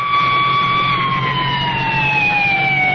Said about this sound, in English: Up ahead, flares announce an accident. Like an overturned bug, sprawled across the highway, a sedan lies on its roof. An ambulance swings away with its passenger.